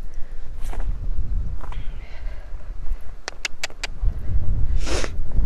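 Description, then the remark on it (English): A few short, breathy sniffs into the mic, with a louder one near the end, over a low outdoor rumble and a quick run of light clicks. “Excuse me, sniffing away.”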